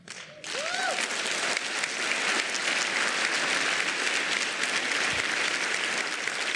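Sustained audience applause, a dense, steady wash of clapping that swells in after a brief quieter moment and stays loud throughout, with a few faint whistles or cheers at the start.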